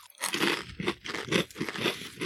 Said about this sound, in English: It's growing on me now. Yeah, it is. It's pretty good for mindless munching.